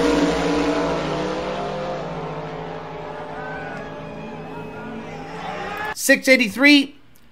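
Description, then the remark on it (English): Drag race cars roar down the track on a qualifying pass, a loud, sustained engine howl that gradually fades over several seconds, followed by a brief moment of someone talking. “Okay, so then that was the qualifying pass.”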